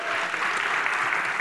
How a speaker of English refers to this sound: Round of applause for that cutscene.